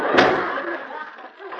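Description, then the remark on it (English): A door is pushed shut with one solid thud near the start, followed by a brief rattling, muffled tail that fades out. “Wait till I close this door.”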